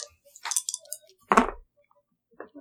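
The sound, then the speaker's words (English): An eight-sided die (d8) clatters across a hard tabletop in a quick burst of sharp clicks and rattles, followed by a stronger tumbling clatter, then a brief final click after a pause; the die is rolled twice for thunder damage in a tabletop game. “Could you hand me one of your d8s? And I'll just roll one twice.”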